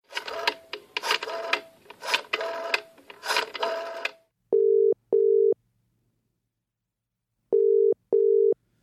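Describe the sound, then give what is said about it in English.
A telephone ringback tone heard while a call connects: two double-ring bursts of a steady mid-pitched tone separated by silence, preceded by several seconds of clattering, rhythmic mechanical noise. “let's make one last phone call before we skedaddle.”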